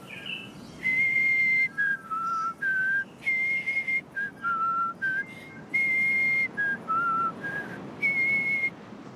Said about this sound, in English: In a tree nearby, a bird sang a beautiful note. Then it started to sing our song.